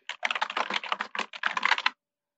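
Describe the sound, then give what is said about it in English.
Rapid clattering keystrokes on a computer keyboard while searching on Google, a dense burst of clicking typing for about two seconds, moderately loud, then silence. “It's gonna be a lot of clicking.”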